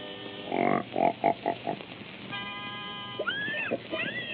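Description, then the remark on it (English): A pig gives a rapid series of five short grunts, then a steady held tone sounds as the pig is tuned to pitch, before several high, swooping squeals slide up and down in pitch as the pig sings. “Wait till hey, wait till you hear my singing pig. First, I got to get him in pitch.”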